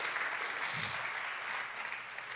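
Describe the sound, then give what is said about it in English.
An audience claps together in a dense, continuous wash of applause that holds a steady, fairly loud level for a couple of seconds, with no distinct voices. “Let's offer a hand clap again.”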